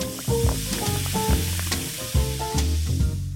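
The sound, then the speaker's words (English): Steady fizzing hiss of a distilled non-alcoholic spirit and soda poured over ice runs throughout at moderate loudness, with a few sharper clinks and a low tonal music-like bed underneath. No one speaks. “Coming up, a certain brand of distilled non-alcoholic spirit and soda over ice.”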